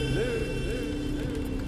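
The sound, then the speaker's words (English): A car horn blares at a driver veering onto the wrong side of the road, one long, steady, brassy tone that holds for the whole moment, loud and unbroken over a rumbling, engine-like background. “A car horn shrieks at me and I'm present again, veering onto the wrong side of the road.”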